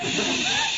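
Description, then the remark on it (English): A steady, breathy 'shh' hiss heard over a telephone connection runs without a break for under a second at an even, fairly strong level, with a faint murmur of tones threaded through it. “Osgood, are you hissing me?”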